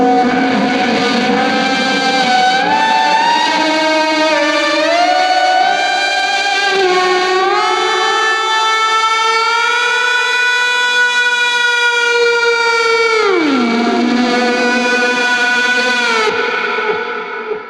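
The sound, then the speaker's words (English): Slide guitar played with a glass slide through a Soundstone sustainer pedal, sustained harmonic-rich notes gliding up and down in pitch, steady and loud, swelling into long wailing tones with a sharp downward swoop near the end. “And I think that comes out with the Soundstone, which you'll hear now.”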